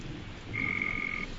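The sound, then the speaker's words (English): A single bullfrog croak sounds once, a sustained, steady, fairly high-pitched call lasting under a second over a low background rumble, with no one talking. “Can we get the bullfrog on the phone?”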